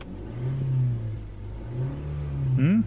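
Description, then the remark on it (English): An old Nissan Sentra's engine is revved in limp mode with a steady, strained drone that barely climbs, throttle-limited, then pitches upward sharply in the last half second. “I'm revving it up. Makes the car noises.”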